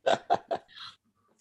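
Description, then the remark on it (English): A sneeze: three short voiced catches in quick succession, then a breathy, hissing burst as the sneeze releases, after which everything falls quiet. “Just oh, God bless you.”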